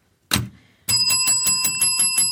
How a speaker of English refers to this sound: Here go a bell.